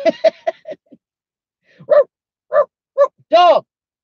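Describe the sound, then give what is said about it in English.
A dog barks: a quick flurry of short yips, then a pause and four louder, evenly spaced barks, the last one longer and more drawn out, with no talking. “Dog. Dead dog.”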